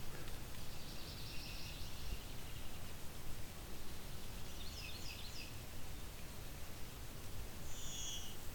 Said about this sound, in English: It's the bee call from the blue wing warbler.